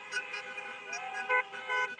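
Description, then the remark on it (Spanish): Several car horns honk at once in a steady, overlapping chorus during a pro-Trump car caravan in Doral, Florida, with sustained tones and short extra blasts on top. The honking is loud and continuous, with no talking. “Cubans 4 Trump presented Mother of All Car Caravans in Doral”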